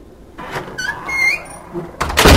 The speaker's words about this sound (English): Please come in. That will allow me to close the door.